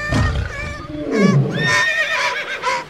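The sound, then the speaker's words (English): A horse in the packed hold of the ship carrying Buffalo Bill Cody's Wild West troupe from New York to London in 1887 whinnies in a long, wavering neigh, its high harmonic tones sliding and quavering, with lower snorting, breathy sounds mixed in and no one talking. “The hold was packed with horses, buffalo, elk, and mules.”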